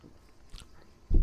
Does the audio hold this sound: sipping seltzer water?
yes